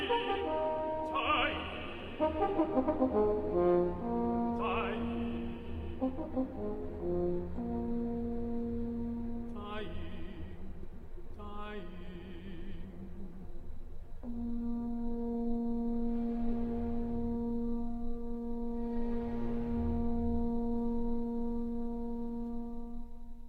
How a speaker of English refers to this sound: It's the horn, not surprisingly, which gives us the sound of the bugle. At the same time, the singer's urging the bugle on, like a huntsman rallying his dogs. The bugle seems to echo the tenor's words in its ecstatic, rolling fanfares. Dying, dying.